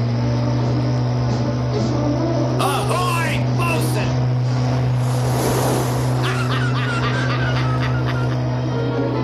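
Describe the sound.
A sport fishing boat named Yellowtail speeds past another boat, trying to swamp it. Its engine drones steadily, then surges with a rush of water as it passes, with shouted voices and honking-like calls breaking in over the motor.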